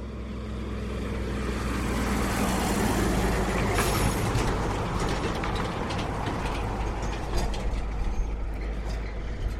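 A three-carriage road train carrying ore rumbles past on the dirt beside a single-lane tarmac road, a loud, steady low roar mixed with rattling and clattering gravel noise, continuous throughout with no voices.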